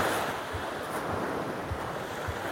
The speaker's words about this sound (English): For now, we'll just hear these waves rage.